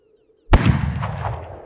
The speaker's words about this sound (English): I'm woken by a gunshot.